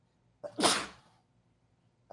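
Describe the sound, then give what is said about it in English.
A single sharp sneeze with a quick inhaled buildup and a loud, breathy burst that trails off, otherwise quiet. “Bless you, child.”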